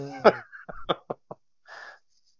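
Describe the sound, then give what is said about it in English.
A short voiced grunt is followed by three or four quick, hacking coughs, then a brief raspy, wheezy breath and silence. The cough comes from creosote. “Good for the cough that you have from that creosote.”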